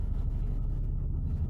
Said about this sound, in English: I think a helicopter is landing on my head. There it goes.